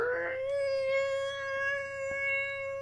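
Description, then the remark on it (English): A long, squeaky creak of a door slowly swinging open, one sustained whining tone that holds steady, almost like a meowing cat, heard alone. “It was not a cat. It's was a door. It was squeaky just creaking door. Open.”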